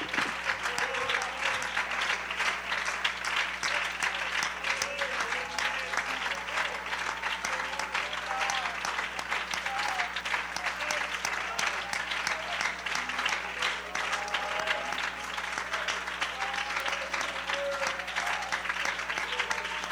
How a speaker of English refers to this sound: I want us to give the Lord a hand clap of thanksgiving for what he did. Amen. Come on, give the Lord a hand clap. That's all right. Stand to your feet and give the Lord a hand clap.